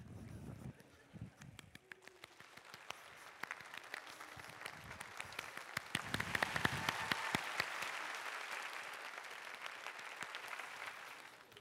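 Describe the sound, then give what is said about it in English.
A large group imitates a rainstorm with their hands, scattered snaps and taps swelling into dense, rain-like clapping and patting, then gradually thinning out again. “We just made it rain right here at Victory.”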